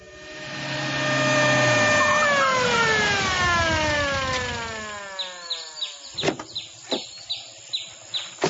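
A loud siren on Officer Harley's police car, carrying a boy caught stealing garden produce, holds its tone, then slowly winds down in pitch and fades, followed by a series of quick, sharp chirps and clicks.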